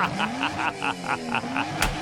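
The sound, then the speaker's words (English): A sports car, backing up on a road to a protester blocking traffic, revs its engine with a rising, throaty drone and rapid rhythmic pulses, steady for about two seconds, ending in a brief sharp burst. “the guy in the car with his sports car backs right up to him, revs the engine, and the guy goes deaf right there in the road.”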